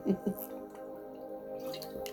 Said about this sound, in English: Let me have a sip of water.